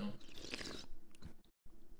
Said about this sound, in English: Because like it's the same concept of slurping. So you're aerating the coffee when you chew. It kind of forces air in and out of that water.